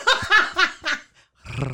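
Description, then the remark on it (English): A few quick bursts of laughter, then after a short pause a person gives a low, growly roar in imitation of a lion, brief. “That's not how a lion sounds. They're that's more... That's how my lion sounds.”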